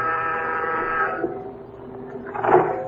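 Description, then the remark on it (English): A door buzzer, pressed at Pat Chambers' address down in the village, gives a long, harsh, steady electric drone for just over a second, fades, then swells briefly again; there is no talking. “As you press the door buzzer, you wonder what Pat had found out.”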